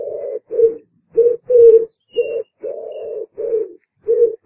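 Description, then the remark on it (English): A pigeon coos over and over in soft, low, throaty phrases with short gaps between them, fairly loud. A few faint higher chirps come through in the background. “I must have been in my 20s when I realised that was pigeons and not owls.”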